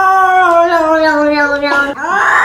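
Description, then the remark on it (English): A long, drawn-out, loud cat meow, its pitch sliding slowly downward before a brief break and a rising wail at the end. “I got two cats behind me staring through the back of my fucking head.”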